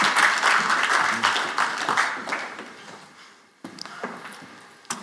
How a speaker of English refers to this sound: Well, I'm obviously thankful for you guys. Let's give them a round of applause as we thank them for all their labor.